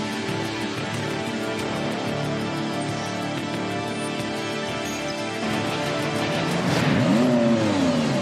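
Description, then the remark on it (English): A gray truck with peeling clear coat idles with a steady, rumbling engine drone, then revs up near the end, its pitch climbing and swooping loudly. No voices are heard. “I mean, it's not the prettiest truck you'll ever see.”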